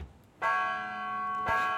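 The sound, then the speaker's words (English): A bell at the front door of an old dilapidated theater is struck twice, about a second apart. Each loud strike leaves a bright, sustained metallic ring that hums on between hits. No one speaks. “Cuttlefish and Krill watch as McMurphy approaches the front door of the old dilapidated theater and rings the bell.”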